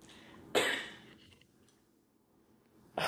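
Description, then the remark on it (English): A girl coughs twice, a sharp burst followed by a brief quiet stretch, then a second cough that is cut off at the end; no one speaks. “Cough in the middle of my recording.”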